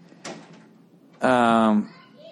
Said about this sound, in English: All right, close the door.